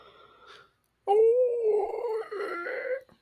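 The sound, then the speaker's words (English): A person lets out a loud, drawn-out howl imitating a coyote, one sustained wavering call lasting about two seconds after a brief quiet pause. “So, they're like, well, yeah, once he's used to being alone, he can't go out in the wild and interact with other coyotes. Howl at the moon.”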